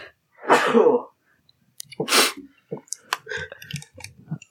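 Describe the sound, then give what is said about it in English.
A loud sneeze bursts out, followed by a second sharp, breathy blast and then a scatter of small clicks and rustling noises. “gives it a sneeze.”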